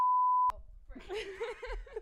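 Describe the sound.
A loud, steady censor bleep tone covering swearing sounds for about half a second and cuts off abruptly, followed by a person talking or laughing.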